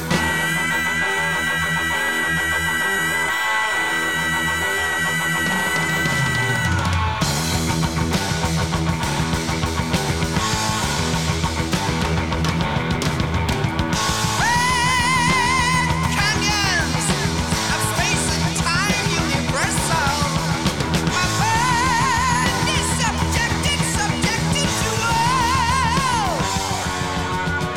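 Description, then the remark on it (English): A loud heavy metal song: a sustained, ringing intro gives way to the full band crashing in with driving guitars and drums, topped by a high, wailing vocal scream. “it really showcases … voice early on in their career, especially with the opening scream”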